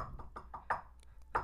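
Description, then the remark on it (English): Knocking on a hard surface, like someone rapping at a door: a quick, even run of five knocks, a short pause, then one final louder knock, with no talking. “I had to make no noise and just pretend I was sleeping the whole time as I was hearing the knocks.”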